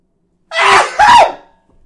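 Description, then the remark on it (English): A single loud sneeze in two quick bursts, a sharp rising intake followed by an explosive "choo", heard on its own with silence around it. “I'm going to sneeze now.”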